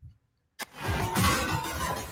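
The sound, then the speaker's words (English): In a movie trailer, after a moment of near silence, a racing car engine bursts into life and roars loudly and steadily, a sustained growl with a rising whine layered on top. “We'll leave you with the official trailer for Gran Turismo.”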